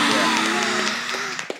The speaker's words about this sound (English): We have hit 1,000 subscribers on YouTube, y'all. Put another crowd clapping noise.